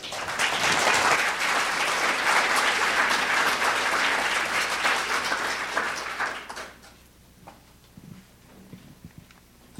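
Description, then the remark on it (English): Loud, dense applause from an audience for the UC Faculty Action Champions, a steady wash of clapping that fades out after about six seconds, leaving a few scattered claps and quiet background noise. “If we could give them all a round of applause.”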